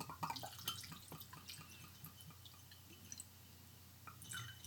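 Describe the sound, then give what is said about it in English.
Benchmark Top Floor 86 proof whiskey poured over ice in a glass: soft trickling and dripping broken by sharp little clinks and crackles, fairly quiet, with no talking. “The most proficiently audio pouring podcast currently available on the internet, ladies and gentlemen, getting worked.”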